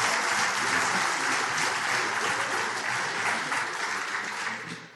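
A crowd applauds steadily, a dense wash of many hands clapping at an even, fairly loud level that tapers slightly toward the end, with no talking over it.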